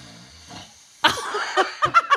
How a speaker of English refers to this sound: No, I'll play that one for you again. Show us the snore. Listen.